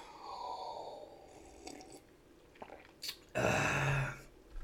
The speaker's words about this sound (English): I'm going to take another sip of wine. Help me go to sleep.